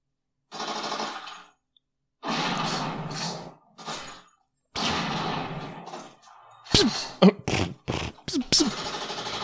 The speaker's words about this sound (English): Got him. Damn. Four times before he even hit the ground. He shot seven times. The max that shotgun is going to have is seven times.